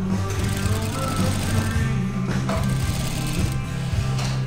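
Several sewing machines hum and whir steadily together, a dense, continuous low mechanical drone with a fast rattling rhythm, with music faintly underneath and no talking.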